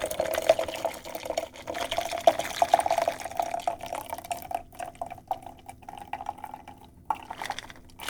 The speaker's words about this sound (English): Put the lid on your cocktail shaker, give it a good shake for a good 10 seconds or so, and then strain that over into a goblet wine glass. You want a big wine glass here. There's a lot of liquid, but also you want the drink to have room to breathe.